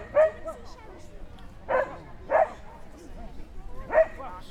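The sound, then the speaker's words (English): A person imitates a dog barking as part of a performance, giving four short, separate woofs spaced unevenly over a few seconds, fairly loud against a quiet background. “he was very good at barking, so I had to bark a lot as part of my performance.”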